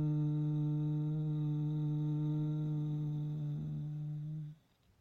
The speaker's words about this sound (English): you close your eyes and you just chant lum. And really allow that humming sound to reverberate in the base of your spine. So it's lum.